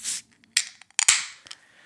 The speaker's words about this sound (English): Okay. Grab your can and grab your glass. And let's open her up.